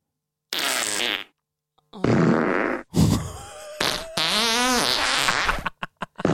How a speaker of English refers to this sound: All right, that's enough. I wonder if that was one person that just recorded all their farts. Well, surely that would take a long time to do that many.